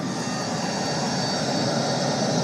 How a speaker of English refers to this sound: Can you get the sounds of the airplane?